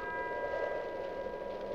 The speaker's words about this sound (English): Oh. Not exactly a happy tinkle, but... I'm not sure for whom that bell's tolling, but I hope it's not for us. I hope somebody answers it soon.